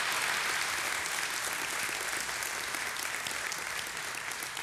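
Steady audience applause fills the whole stretch, a dense, even wash of many hands clapping at once with no voices standing out, holding a constant loudness throughout.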